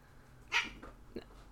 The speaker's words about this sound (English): Sorry, that was our cats.